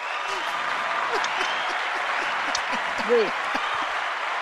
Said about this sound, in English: This is where I ask Frank to give me the claps on his soundboard.